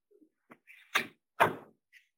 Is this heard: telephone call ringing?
no